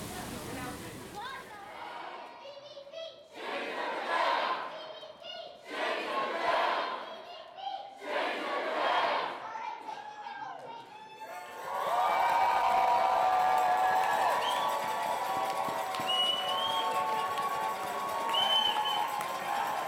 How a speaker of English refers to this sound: After a thorough downpour, we finally made it to the main crowd of Our Time's CBC Change the Debate rally to catch some chants, songs, and this interview.